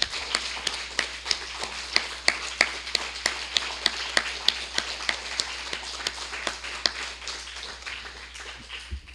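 A church audience breaks into steady applause in appreciation of a couple's ministry, with sharp overlapping claps and a few louder ones standing out, carrying on for several seconds in a reverberant church without any talking.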